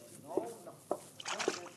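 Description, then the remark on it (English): Water is poured onto a man's head and splashes in a few short, sloshing bursts, with faint vocal sounds mixed in underneath. “But now Pancho with water on Cisco's head.”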